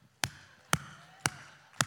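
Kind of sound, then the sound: human body sound, one person clapping hands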